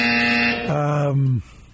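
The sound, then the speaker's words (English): A harsh, buzzing game-show buzzer blares twice in quick succession, the second tone dropping lower before cutting off abruptly. “Buzz me. I deserve it.”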